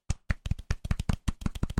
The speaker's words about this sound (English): Well done, sir. Well done. Golf clap. Golf clap.